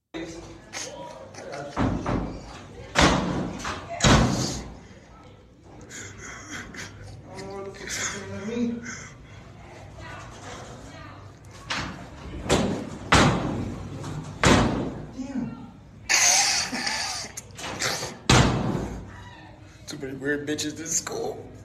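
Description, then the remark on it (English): A door in a school is banged and rattled over and over, loud thuds in irregular bursts as a young woman inside tries to break out while someone, apparently a teacher or administrator, holds it shut by the handle, with muffled voices in the background. “If you can't see what's happening, it looks like a teacher or an administrator or somebody is trying to hold a door closed by the handle, and some hefty young lady is on the inside trying to bust out.”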